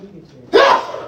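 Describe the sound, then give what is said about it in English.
A single sudden sneeze bursts out loud, a sharp explosive blast of breath that quickly trails off after a brief quiet moment with faint background murmur. “Bless you.”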